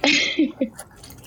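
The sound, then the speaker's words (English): An airy slurp as someone sips a glass of prosecco rosé, followed by two quick, soft wet gulps, then near quiet. No one speaks. “I need another sip.”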